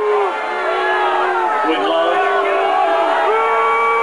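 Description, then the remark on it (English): A crowd of about 1,000 people at a college commencement speech in Rockford, Illinois, booing loudly at the speaker, many overlapping drawn-out voices with some hissing mixed in, a steady wall of disapproval that swells and continues throughout without any clear speech. “People started booing and hissing.”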